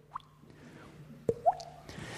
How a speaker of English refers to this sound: Anyone had that dripping tap? It is the most annoying thing, trying to get sleeping.